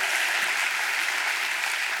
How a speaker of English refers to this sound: Come on, one more round of applause. Can we do that? Woo!